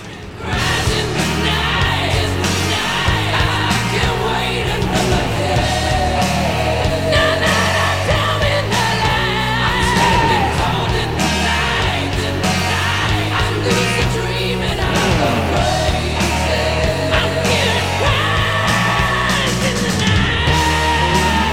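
A 1985 hair metal song by a Los Angeles, California band plays loud and steady throughout, with a dense wall of distorted guitars, pounding drums and a strained, high-pitched lead vocal cutting through the mix.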